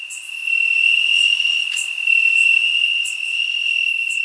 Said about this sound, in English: The crickets are louder than you are with their little bitty brain.